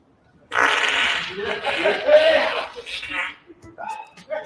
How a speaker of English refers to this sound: We're going to run that back. Spoiler alert, he's going to fart.